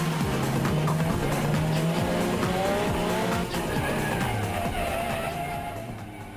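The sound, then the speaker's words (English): A car launches and its engine revs hard, climbing through gear changes from first into second while tires squeal and skid. Loud, with no voices, the roar easing slightly at the end. “You nail it, first gear. Second gear, you're looking for traction, lots of traction.”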